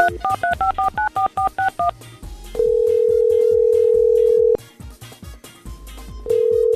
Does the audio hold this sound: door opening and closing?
no